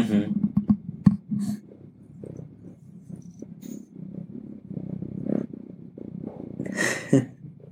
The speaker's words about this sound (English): I hope you guys can hear him purr.